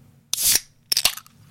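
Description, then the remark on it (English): A drink can being cracked open: a bright fizzing hiss, then a couple of sharp snapping clicks from the tab, short and crisp, with no talking. “Oh, it was crispy. That was a good crack.”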